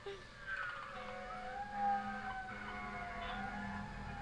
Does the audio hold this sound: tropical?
no